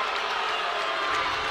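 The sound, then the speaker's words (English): A large arena crowd at a basketball game roars in a dense, steady wash of noise at a block call against Aiden Miller, voices blending into a disapproving murmur with no single voice standing out, holding at the same loud level throughout. “Crowd doesn't like that.”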